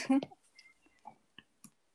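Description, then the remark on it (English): A few sharp, irregular keyboard taps click loudly, spaced apart with quiet gaps, following a brief burst of voice at the start. “Also, the keyboard tapping is really loud, just so you know.”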